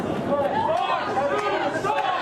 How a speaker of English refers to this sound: A lot of people in the crowd are not wearing masks. We're keeping a respectful distance, but a loud and very boisterous crowd.